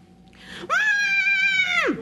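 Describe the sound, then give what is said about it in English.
A person lets out one loud, sustained, high-pitched scream of fright lasting just over a second, with the pitch sliding down sharply as it cuts off. “And of course, I shut my eyes real tight and I shut my mouth and bring up my fists because I'm scared to death. And I start to scream.”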